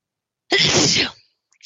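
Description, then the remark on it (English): A single loud sneeze bursts out suddenly and fades quickly, followed by a brief faint rustle. “That sneeze.”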